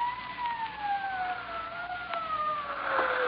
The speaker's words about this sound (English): Well, here they come. Oh, are they? How do you know? Sirens. Can't you hear them? What's that? I said sirens. That's how I knew the police were...